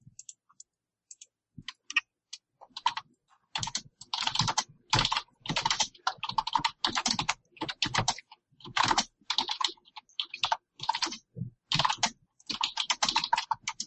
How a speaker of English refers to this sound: You have the most interesting way of typing